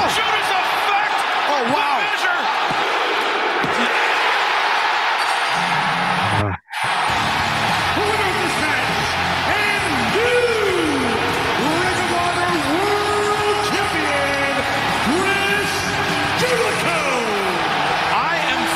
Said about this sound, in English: And that wasn't piped. That wasn't like fucking bait, like audio changed around. Like, that place was loud for Chris Jericho winning the fucking title, man.